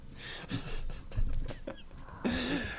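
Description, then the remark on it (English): Loud, heavy breathing, a series of ragged panting breaths in quick succession, ending with a longer wheezy, rasping exhale. “Breathing around his ass.”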